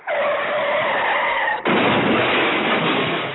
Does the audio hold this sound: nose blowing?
no